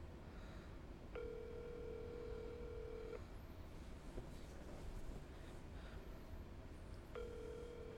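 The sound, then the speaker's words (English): A phone ringback tone sounds during an outgoing call: a steady two-second ring, a pause of several seconds, then a second ring starting, fairly quiet over a low background rumble. “Your phone's really quiet.”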